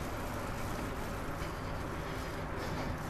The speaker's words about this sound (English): Whoa, what was that? Must have been a motorcycle upstairs. Upstairs. Up on Fairview. That's what upstairs is.